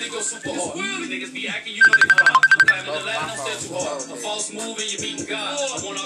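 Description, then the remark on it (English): A phone rings with a brief, rapid electronic trill of repeated beeps lasting about a second, cutting in over people talking steadily throughout. “One of y'all gotta answer that.”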